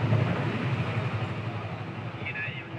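Riding on the back of a motorcycle with blinking lights, one of several motorcycles guiding a car carrying a pregnant woman through traffic to the hospital: steady engine drone with rushing wind and road noise, continuous throughout, with a brief high whine near the end.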